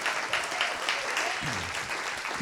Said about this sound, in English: Well, clap for that lovely man, everyone.